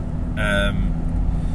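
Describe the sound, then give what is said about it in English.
Steady low rumble of road noise inside a moving car driven to or from work in the rain, with wind, wipers and indicators, constant and fairly loud throughout, with a brief higher tonal chirp near the start layered over the drone. “And the sound of the road, the car, the wind, the rain, the wipers, the indicators, and me talking all together, you can turn it down as low as you want, so it's just white noise,”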